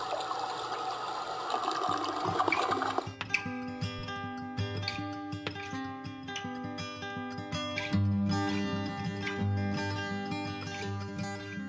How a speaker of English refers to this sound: I flushed that sucker goodbye.